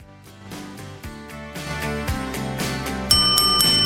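Music plays with steady rhythmic notes, then a bright, bell-like ring, a bell rung as a sound effect, cuts in loudly near the end and rings out over the instruments.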